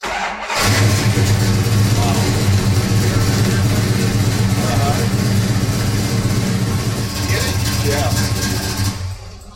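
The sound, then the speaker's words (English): The big-block engine of a 1970 Dodge Dart Swinger fires up abruptly and settles into a loud, deep, throbbing idle, with slight revving swells, rumbling steadily for about nine seconds before cutting off. “Then the 1970 Dodge Dart Swinger, big block engine.”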